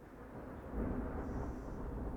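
A deep, rolling thunderclap rumbles low and steady, swelling slightly after a moment and sustaining without a break. No voices are heard, just the heavy roar of the storm.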